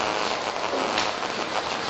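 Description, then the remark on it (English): Many Bible pages turning at once, a dense, steady papery rustle and crackle that fills the whole two seconds like light rain, with no voices. “By the way, I did like to hear the pages turning.”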